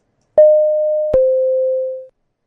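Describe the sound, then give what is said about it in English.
A two-note electronic airplane chime, the tone heard when the no smoking and seatbelt signs come on: a bright struck tone rings out, then a slightly lower second tone follows and fades away. No talking, just the clean ding-dong alone. “It's the tone of an airplane, like the no smoking sign goes on and the seating sign comes on.”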